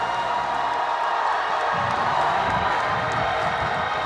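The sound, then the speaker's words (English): A large crowd, urged by a speaker to leap up and shout by faith, shouts and cheers together in a continuous, dense roar, with overlapping voices and whoops sustained at a steady loud level throughout. “Now, if you really, really, really believe it, I dare you to leap up and shout till it's not you shouting.”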